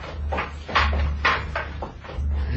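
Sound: door opening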